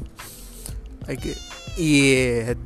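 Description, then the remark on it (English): A female cat held in a person's hands meows several times: a few short, broken calls, then a loud, long, drawn-out meow that wavers in pitch before trailing off. “This was the original audio of Kitu.”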